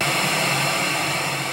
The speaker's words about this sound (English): The white noise blared to life so loud I nearly crapped my pants. So I quickly turned it down and waited in silence, hoping it didn't wake my parents up.